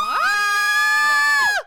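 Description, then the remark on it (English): Several voices let out one loud, sustained scream together, pitching up sharply, holding steady for about a second and a half, then breaking off abruptly. “Oh, yeah, you have to scream. Ready? On three.”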